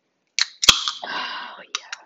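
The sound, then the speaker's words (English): A beer being opened: a few light clicks, then one sharp, loud pop followed by a short hiss of fizzing gas that fades out, ending with a couple of small taps. “And this is me opening said beer.”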